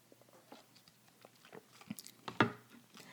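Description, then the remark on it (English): A quick, quiet sip from a drink: small wet mouth clicks and lip sounds, then a brief swallow and smack, with no talking. “So let's just take a baby sip for that.”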